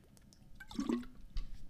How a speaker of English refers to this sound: I know I haven't, so I want both of us to grab a water bottle. I have one right here. We're gonna chug it right now, drink some water, hydrate.